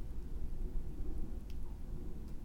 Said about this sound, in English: So windy. It is windy.